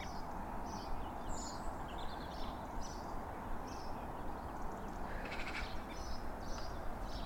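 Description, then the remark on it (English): A chiffchaff, a migrant warbler, sings its repetitive two-pitch song on 26 February beside a canal, a steady series of short, high, thin notes over a constant rushing outdoor background noise. “That's the earliest chiff-chaff I've ever heard.”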